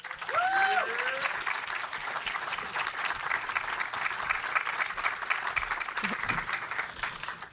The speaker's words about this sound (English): Please give a round of applause